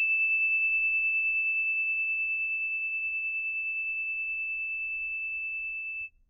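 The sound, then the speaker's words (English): One bell chime rings out as a pure, high, steady tone, sustaining for about six seconds and fading only slightly before stopping abruptly. No voices accompany it. “Here comes the bell.”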